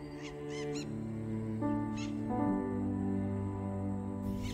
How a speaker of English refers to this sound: Each day follows the same pattern, and twilight sees the return of the squawking parakeets.